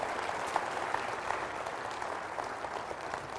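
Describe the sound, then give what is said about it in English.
A large church audience applauds steadily to welcome guest speaker Dr. David Gibbs, a dense wash of many hands clapping at once, sustained and even throughout with no voices standing out. “I deeply appreciate that kindness and that applause.”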